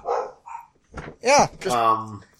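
dogs barking

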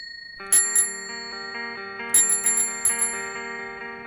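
bicycle bell ringing

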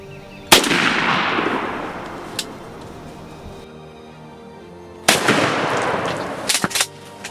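shotgun blasts

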